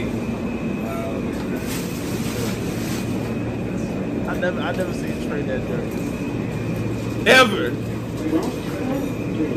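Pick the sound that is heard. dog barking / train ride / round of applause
train ride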